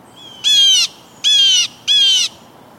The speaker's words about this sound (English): The alarm call of the jay helps protect not only the jay and its kin, but all those smaller birds too.